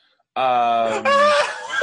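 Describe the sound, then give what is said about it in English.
A person's voice imitates the scream of Black Canary, a Batman-adjacent comic character: a long, loud, strained, sustained wail lasting about a second and a half that breaks and jumps higher in pitch halfway through. “What's that chick who screams?”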